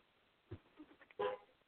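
A short, muffled car horn honks once as a neighbor comes home from dialysis, preceded by a few faint scattered knocks and rustles against a quiet background.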